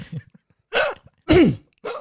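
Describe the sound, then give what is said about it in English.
Three loud, deliberate coughs made to get a grandmother's attention, evenly spaced about half a second apart, each a short throaty burst, preceded by a faint murmur and otherwise quiet. “Don't go coughing around your nan now, though.”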